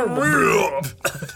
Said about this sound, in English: What was that? I'm about to burp. I was trying to hold it in.